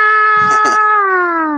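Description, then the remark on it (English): An air raid siren holds a loud, steady wailing tone, then begins sliding slowly downward in pitch, with a brief burst of voice briefly mixed in early on. The sirens come back on when a switch is pulled and the power and lights return. “And so do the air raid sirens.”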